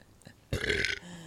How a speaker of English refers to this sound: I burp at you. I just. Yeah, right? Like, it smells like boozy pumpkin. Like bourbon pumpkin.